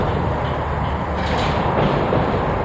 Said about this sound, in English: Winds howl through a hangar at Wendover Airfield in Utah's Great Salt Lake Desert. The windows are smashed, the walls rusted. Once the hangar was home to the Enola Gay, the B-29 bomber that dropped the first atomic bomb on Japan.